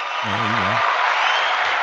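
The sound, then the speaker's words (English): Steady, dense clapping fills the whole stretch like a burst of applause, loud, with a brief voice murmuring underneath near the start. “Before you go, we got to clap it up, man.”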